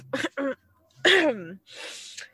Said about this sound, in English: lets out a snort before attempting to cover it with a cough.